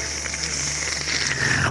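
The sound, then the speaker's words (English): A long, wet slurp of coffee drawn in steadily for under two seconds, airy and hissy with a bubbly rattle, then cut off abruptly. No talking. “did you just slurp down a cup of Joe?”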